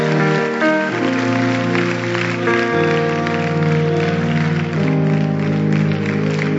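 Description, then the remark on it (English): An audience claps hands steadily as a dense, continuous patter, mixed with loud sustained musical chords that shift pitch a few times. “Clap your hands, stand to your feet.”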